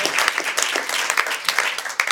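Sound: audience applause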